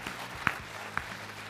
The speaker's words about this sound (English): So without further ado, could you give a round of applause, please